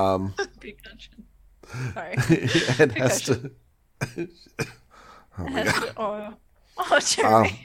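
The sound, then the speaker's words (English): Several sharp coughs break out in short bursts, mixed in among people's voices talking and making throaty sounds. “got a cough, everybody.”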